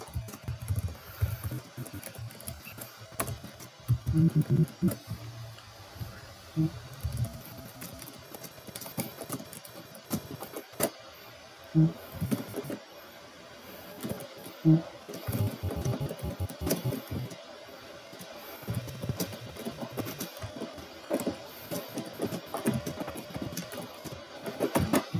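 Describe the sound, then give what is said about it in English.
Someone types steadily on a keyboard, writing to a friend, producing a continuous run of light, irregular key clicks with occasional brief pauses and a few sharper taps, with no talking. “See, look, you guys are still watching me, and I'm just typing to a friend.”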